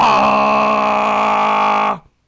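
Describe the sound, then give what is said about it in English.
A voice imitates the loud horn of a train coming through a junction with one sustained, blaring, slightly nasal tone held steady for about two seconds before cutting off abruptly. “And it's one of the trains coming through the junction.”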